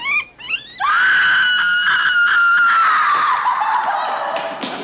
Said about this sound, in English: All right, here's your bad scream for the movie.